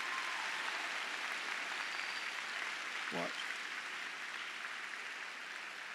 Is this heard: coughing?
no